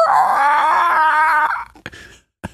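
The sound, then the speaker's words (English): A person vocally imitates a dragon screech: one long, loud, strained wail lasting about a second and a half, harmonic and wavering, followed by a couple of short breathy clicks. “And just the stadium goes silent as they hear the dragon screech in the distance, and the camera looks up at the sky, and out of nowhere, a fireball blasts into the screen.”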